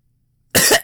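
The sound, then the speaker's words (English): A single short, harsh cough burst voiced by an adult imitating a child character coughing in a video game, loud, following a brief silence. “The kid starts fucking coughing.”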